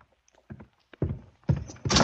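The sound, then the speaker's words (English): A closet door is opened: a handle rattles, then several wooden thunks and bumps follow in quick succession, the last swinging open with a brighter scraping clatter. No one speaks. “go to the closet. Open the door.”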